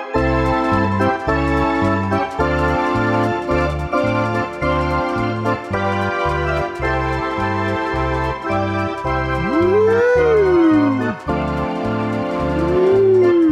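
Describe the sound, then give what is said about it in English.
A ghostly howling voice swoops up and back down in a long wavering wail, then starts a second rising howl, both sung over steady, loud rhythmic music with a pulsing bass line. “It just, now you sound like a ghost.”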